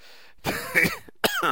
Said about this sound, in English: Wow, look at that. You guys made me cough.